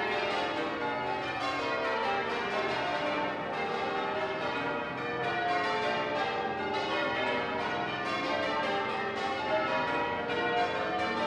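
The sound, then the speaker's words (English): Twelve church bells ring in rapid repeated rounds, strikes overlapping into a dense, sustained metallic hum that swells as each bell keeps ringing after being struck, loud and continuous with no voices. “There's a kind of a hum building up because the sound of each bell sort of expands and continues to ring once the bell's been struck.”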